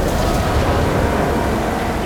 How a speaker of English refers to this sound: What the hell did we hit? That was metal on metal. We're taking on water.